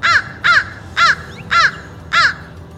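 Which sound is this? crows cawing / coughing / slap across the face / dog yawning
crows cawing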